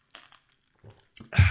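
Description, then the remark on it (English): Someone sips iced tea: a few quick, crinkly rattles and clicks, a short pause, then a louder, fuller slurp at the end, with no talking. “Sip a iced tea for the hole in my back.”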